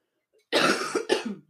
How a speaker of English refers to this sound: I have to cough. I'm sorry.